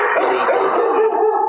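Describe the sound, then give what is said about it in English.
Dogs barking loudly in a dense, overlapping burst, the yaps blurring into one continuous, steady racket with no voices over it. “Yep, got dogs and a doorbell.”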